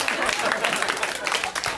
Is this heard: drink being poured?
no